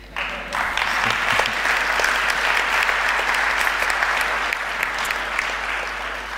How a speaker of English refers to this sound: Come on, surely that needs a clap.